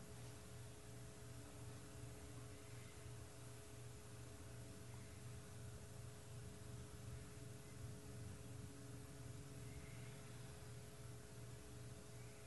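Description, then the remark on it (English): A steady, unbroken static hiss from a sound system fills the whole stretch, with a faint low electrical hum beneath it; no voices, just constant, even noise at a low level throughout. “Is there an echo? It's like a static.”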